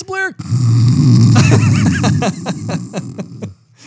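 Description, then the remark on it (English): A voice imitates snoring with a long, loud, rattling low rumble lasting a few seconds, mixed with voiced tones and ending in a series of short pulses before it stops. “Hearing you snoring over there.”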